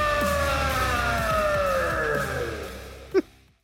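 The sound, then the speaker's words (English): A loud alarm coming out of the Jumbotron wails continuously. Its steady whining tone slides slowly downward in pitch for several seconds, then cuts off abruptly just before the end after a brief sharp sound. “I'm doing great, minus the alarm that's sounding behind me.”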